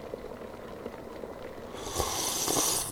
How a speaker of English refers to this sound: The sound of bubbling water brings him back to reality, gently pouring the water on top of the sweet-smelling seeds.